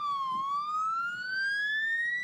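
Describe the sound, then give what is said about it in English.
A local fire department truck's siren, sounded at the end of a quarter at a VFA football game, wails steadily, its tone dipping briefly and then climbing slowly in one long rising sweep. It is loud and continuous throughout, with no voices. “Local fire department sent a truck along to VFA games to sound the siren at each quarter's end.”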